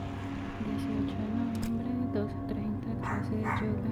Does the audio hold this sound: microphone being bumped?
no